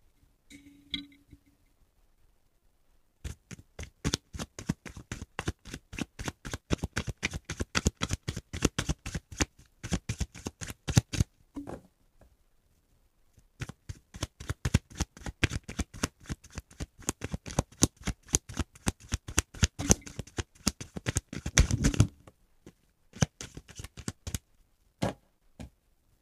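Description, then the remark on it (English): Tarot cards are shuffled right at the microphone in rapid, crisp riffling bursts, with a short pause midway before the brisk flicking resumes, then a few final taps. No one speaks. “Here, for all of you guys who like listening to stuff like this, I'm going to move the microphone so you can hear me shuffling.”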